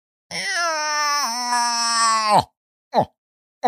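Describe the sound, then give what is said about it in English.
A young woodsman, hands cupped to his mouth, imitates a bull's grunting call during a hunt: one long, drawn-out moaning note, then two short, abrupt grunts, loud with brief silences between. “says in a perfect imitation of a bull's grunting.”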